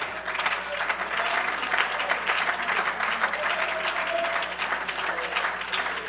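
An audience claps their hands to the Lord together in worship, a steady, dense burst of applause, loud and sustained for several seconds with no voices standing out above it.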